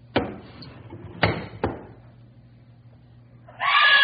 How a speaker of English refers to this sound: what's the matter? Why'd you scream?